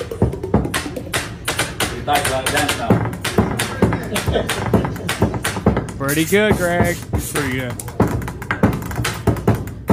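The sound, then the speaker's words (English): Quick, steady rhythmic tapping of pens and cups, sharp clicks and hollow knocks forming a continuous beat, with people talking and reacting over it midway. “Just using pens and cups and stuff.”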